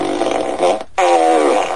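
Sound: fart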